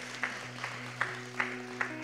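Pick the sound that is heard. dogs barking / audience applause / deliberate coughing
audience applause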